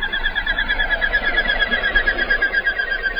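A common goldeneye duck (Bucephala clangula), also called the whistler, calls in a rapid, steady stream of buzzy, whistling notes that carries on without pause, fairly loud over a low background rumble.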